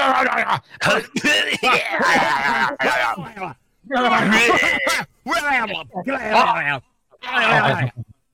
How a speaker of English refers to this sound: I can't clear my throat. My allergies have been acting up all day.